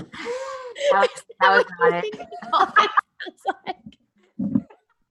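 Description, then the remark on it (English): A voice imitates a dying dolphin with strained, squeaky warbling cries in several uneven bursts, trailing off into short sputtering chirps and a final low groan. “That's what a dolphin sounds in its final moments.”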